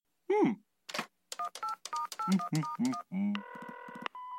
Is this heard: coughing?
no